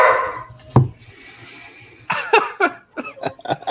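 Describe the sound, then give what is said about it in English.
A dog barks: one sharp bark, a pause, then a quick run of loud, clipped barks in uneven rhythm. No one speaks over it. “Wrong dog.”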